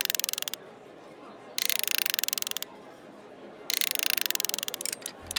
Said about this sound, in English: The clockwork bird clicks for a moment, and then he winds it up.